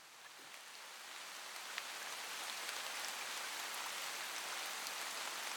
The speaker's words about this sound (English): It was pouring rain that day.